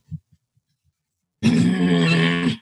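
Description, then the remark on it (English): A voice imitates a husband's low, rough growl during praise and worship, held loudly and steadily for just over a second, preceded by a couple of brief, soft grunting sounds and near-silence. “Yeah, the growl definitely starts.”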